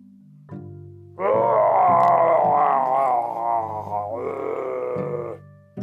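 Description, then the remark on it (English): A voice imitates 50 Hinoxes yelling in alarm: loud, wavering, groaning roars held in one long burst, a brief dip, then a second sustained cry, preceded by a low rumbling lead-in. “Well, right there, while they were busy, like, giving each other compliments and it was starting to get a little bit mushy, they were interrupted by the sound of 50 Hinoxes yelling in alarm.”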